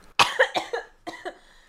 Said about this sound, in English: I have another cough.